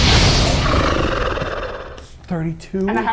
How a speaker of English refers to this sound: Like, and literally directly in between the two of you with maybe an inch to spare and strikes it directly in its main eye. It lets out this horrible scream.